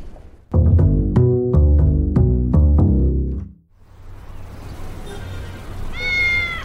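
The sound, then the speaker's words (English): A cat gives a couple of short, high meows, just after a brief burst of bright plucked music fades away. “I'm so happy to see you, kitty! How did you know I needed some cheering up?”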